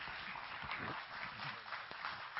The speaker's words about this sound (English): Praise the Lord. I know that applause was for Jesus.